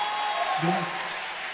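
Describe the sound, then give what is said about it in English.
An audience claps together for Jesus in praise, a dense, steady wash of applause, with a voice briefly rising over the clapping partway through. “oh, clap your hands for Jesus.”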